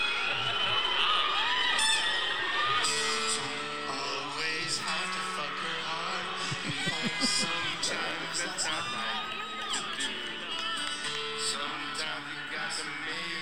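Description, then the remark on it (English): A large concert crowd cheers and whoops continuously during the last song of the night, a dense wall of overlapping voices shouting and singing out, staying loud for the whole stretch. “But listen to the crowd.”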